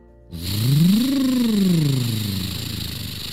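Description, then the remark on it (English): A single loud monster truck engine rev: the motor roars up in pitch, holds briefly, then slowly winds back down over about three seconds, with no talking. “The monster truck was able to drive right over the lava.”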